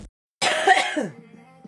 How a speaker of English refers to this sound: And just like that, we're in. Actually, that's the best way to probably start this, with a cough. That's appropriate.